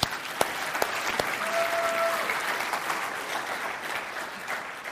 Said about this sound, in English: Would you give God one more round of applause?